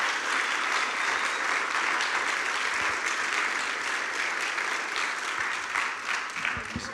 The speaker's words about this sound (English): if we could give him a big round of applause.